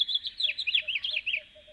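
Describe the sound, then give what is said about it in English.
At twilight, while it is still dark outside, a house finch sings a fast, rollicking warble of bright twittering notes, while a western screech owl gives soft, low toots in a steady series in the distance. “Another common twilight singer is the house finch, whose rollicking warbles are heard here, along with the distant toots of a western screech owl.”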